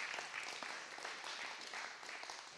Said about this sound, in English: Give the Lord a hand clap of praise for that.